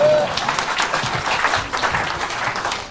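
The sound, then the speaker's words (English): A crowd claps steadily, a dense wash of many overlapping hand claps at an even level throughout, with no individual voices standing out. “Let's give them a clap.”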